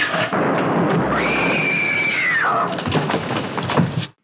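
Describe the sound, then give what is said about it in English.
A loud, sustained explosion rumbles and crackles for about four seconds, with a high wailing cry rising over it midway before the blast breaks into sharp popping debris and cuts off. “has a bit of a scream and there's an explosion.”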